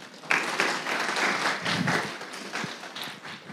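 A short burst of audience applause, many hands clapping in a dense, steady patter that starts suddenly and holds at a moderate level for a few seconds without voices.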